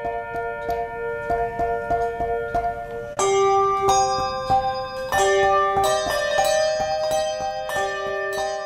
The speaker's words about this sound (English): To give you some perspective, a new set of Schomerich bells would cost about half as much as the Whitechapel bells that you're hearing right now.